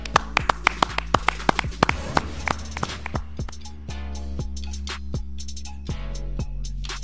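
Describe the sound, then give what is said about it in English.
Scattered hand claps from a few people, quick and irregular at first, then thinning out, over a steady low hum and faint sustained tones. “Clap it up.”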